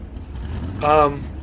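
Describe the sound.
A brief, loud engine-like roar swells up and fades over a steady low rumble, sounding like a voice imitating a car engine revving to life.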